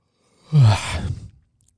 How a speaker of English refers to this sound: It's a real yawn, by the way. And then you yawn.